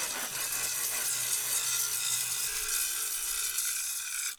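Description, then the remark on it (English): A steady, harsh abrasive grinding of old clay and glaze being scraped off kiln shelves, a continuous gritty hiss with a low motor hum underneath, stopping abruptly at the end. “Meanwhile, the Rogue Potters did some last-minute glazing, and grinding old clay and glaze from the kiln shelves.”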